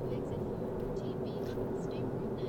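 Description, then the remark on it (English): Steady, low rumbling road noise fills a car cabin at freeway speed, a constant droning hum with no breaks, and a faint, indistinct voice sits underneath it. “Okay, that's enough for now because I'm in my car and I need to get off the freeway and I don't want to get in an accident.”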